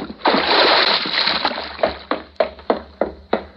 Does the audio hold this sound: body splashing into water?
yes